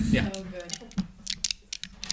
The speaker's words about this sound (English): I and, have all of my dice out. I know! real dice on a table. Shiny Mathrops, go click back. Just feel it. Yes. Just feel it. Dice ASMR.